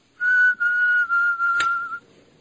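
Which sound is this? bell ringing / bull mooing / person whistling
person whistling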